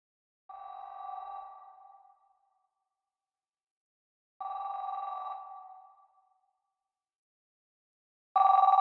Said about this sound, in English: I know when we got the call. 12:58 a.m. I heard the house phone ring, and then his cell phone in the bedroom rang, you know, and he got it.